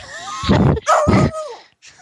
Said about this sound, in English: Good, don't bark at me.